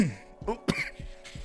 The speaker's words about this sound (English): Cough test. Okay.